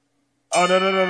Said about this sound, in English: You get one bell and crickets. Get the hell out of here. That is going to be his salute.